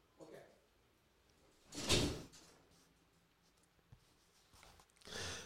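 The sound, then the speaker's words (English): A door opens with a brief rushing swish as someone heads through it to the bathroom, then about three seconds later closes with a second similar sweep, both moderately quiet against a low, hushed background. “So, if you go through that door, you're going to make a left and then the first right.”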